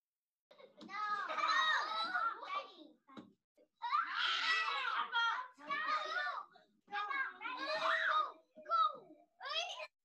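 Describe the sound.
Excited children's voices shout, squeal and chatter in bursts during a class game of volley balloon, with brief pauses between loud, high-pitched outbursts.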